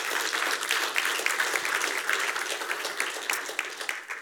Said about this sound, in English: And baptisms, did you realize we've celebrated 15 baptisms this summer? And those 15 baptisms represent 15 personal decisions of faith for Jesus Christ? I think we can clap for that, don't you?